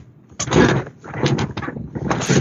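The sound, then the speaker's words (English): A chair being readjusted by someone sitting in it, producing a few loud knocks and scraping bangs in quick, irregular succession over a couple of seconds, with no one speaking. “Yeah, I'm sitting there trying to readjust my chair, man.”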